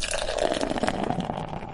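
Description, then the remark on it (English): Omegang beer splashes steadily into a glass, a continuous fizzy gurgle with a bright frothy hiss on top, lasting a couple of seconds with no one speaking. “I don't know exactly at the top of my head, but oh, he's pouring it.”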